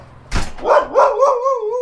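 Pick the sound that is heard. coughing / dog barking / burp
dog barking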